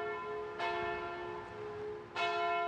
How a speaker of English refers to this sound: As the clock struck 9 a.m, Billington pulled the lever and Dyer plunged to her mortal punishment.